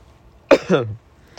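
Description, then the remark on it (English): A single cough bursts out sharply, followed by a rougher, throaty trailing sound like a second smaller cough or throat clearing, then quiet. “I can't mute myself, so I just cough.”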